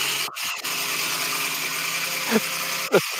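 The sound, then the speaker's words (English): A car engine, with the car still in park, runs with a harsh, raspy drone, briefly cutting out near the start, then a couple of quick rising whines swoop up near the end. No one speaks. “Here's my car, baby.”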